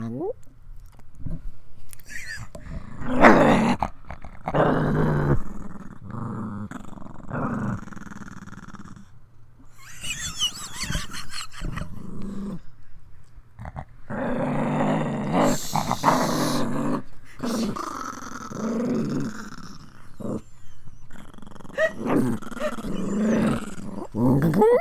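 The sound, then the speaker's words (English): The dogs Ghost, Ellie and Ozzy growl and snarl at each other in a loud fight that keeps going with bursts of harsher barking noises, while people talk and exclaim over the commotion. “Ghost is triggering our dogs.”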